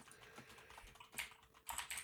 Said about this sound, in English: Oh, he's typing. Oh, he's typing. What does he say?